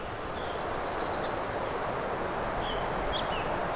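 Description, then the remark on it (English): A black-throated green warbler sings one thin, buzzy phrase of quick repeated notes over a steady bed of rustling outdoor noise, with a few faint chips afterward. “I'm starting to hear black-throated green warbler.”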